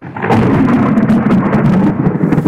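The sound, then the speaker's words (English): A heavy downpour in California's Bay Area, which includes Palo Alto, during an El Niño weather pattern, roars steadily while low thunder rumbles underneath, a dense, continuous storm wash with scattered sharp crackles, loud, with no voices. “A weather pattern called El Nino has begun, and heavy rain fell in the Bay Area, which includes the city of Palo Alto.”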